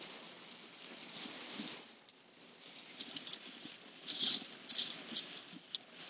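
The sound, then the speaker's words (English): Hail pelting down in a dense, steady patter, with sharper bright ticks and cracks of stones striking now and then, growing busier toward the end. No voices are heard. “Oh, it's hail. I'm getting hit with hail.”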